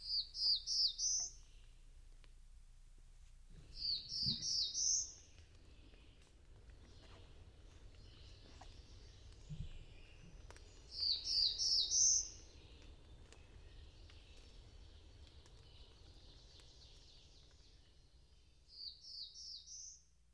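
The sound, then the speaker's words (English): A warbler with a dark blue back and crown, black throat and breast, white belly and a white spot on each wing sings short, high, slightly buzzy phrases among low branches 8 to 10 feet above the ground, repeated five times with pauses of several seconds between them, clear over a faint low outdoor rumble. “and smaller growths, keeping from 8 to 10 feet from the ground, and repeating now and then his listless, indolent strain.”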